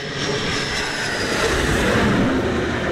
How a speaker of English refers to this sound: The sun sets over the Arabian Gulf, a US Navy jet returns from a seven-hour mission over Syria. The sharp end of America's air war on Islamic State.